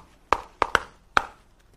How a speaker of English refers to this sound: So I knock on the door.